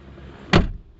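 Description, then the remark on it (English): A single hard car door slam, a sudden loud thud with a short rattling decay, standing alone against faint low background noise with no talking. “Trying to break the window to the car, bloody nutter.”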